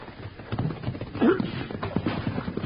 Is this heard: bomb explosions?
no